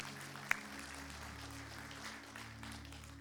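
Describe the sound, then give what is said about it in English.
An audience claps their hands for Jesus, a soft, steady wash of many overlapping claps with one sharper clap near the start, over a low constant hum. No one speaks. “Go ahead, clap your hands for Jesus.”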